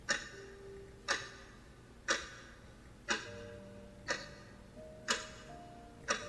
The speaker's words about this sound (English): I could hear my watch ticking. I squeezed my eyes harder and tried to drown out the ticking.